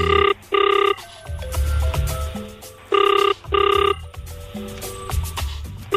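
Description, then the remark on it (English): A telephone rings on an outgoing call to bring a guest onto a radio show: two loud double-burst rings about three seconds apart, with quieter music-like tones and low hum filling the gaps between them. “Please answer the phone.”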